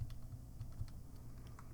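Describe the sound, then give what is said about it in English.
Quick, irregular clicks of someone typing a web search on a computer keyboard, clear, with a low steady hum underneath and no talking. “Excuse the typing on the keyboard if it is too loud.”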